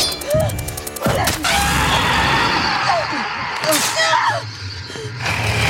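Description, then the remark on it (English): A loud, distorted, monstrous scream, like a Godzilla or Babadook scream, from a man attacked with his own hook, harsh and layered with gasping, crashing noise, sustained for several seconds. “She attacks him with his hook and he screams like a Godzilla sort of Babadook scream.”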